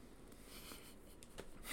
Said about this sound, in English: She takes a big bite.